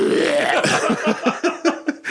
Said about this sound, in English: I know. I can't help it. I'm burping. You're all gassy.